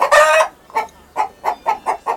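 A chicken lets out one loud, drawn-out squawk, followed by a quick series of five or six short clucks in an uneven rhythm, clear with no talking.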